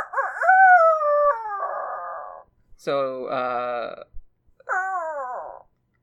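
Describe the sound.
A person's voice imitates turkey calls: three loud bursts, a drawn-out wavering yelp that slides downward, then a rapid rattling gobble, then a shorter falling yelp.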